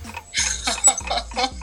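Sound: ticking game-show countdown clock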